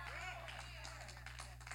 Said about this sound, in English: Y'all ain't even clapping right.